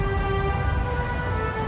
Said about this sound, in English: Cars and people were driving by, and this one trumpet player stood in the middle of it all and sent his sounds against the grain of the city.